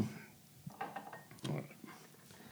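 A chilled cocktail is poured from a shaker and split between glasses, with clinks and rattles of ice and glassware in short bursts, the loudest splash coming midway before trailing off into soft clatter.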